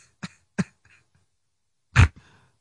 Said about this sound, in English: What's that cough? But that's COVID.